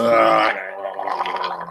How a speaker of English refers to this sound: Oh, God. Dude, those burps are going to make me throw up.